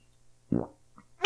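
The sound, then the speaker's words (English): A single short, buzzy fart-like noise blown with the mouth, fairly loud, lasting about a quarter second in near silence before a voice briefly starts at the very end. “That came through your mouth. It sounded like a fart.”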